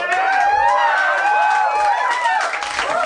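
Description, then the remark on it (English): A live audience cheers loudly and continuously, with many overlapping whoops and excited voices blending into a dense, steady roar for the whole few seconds. “You guys keep reacting so it's like they're happy every time.”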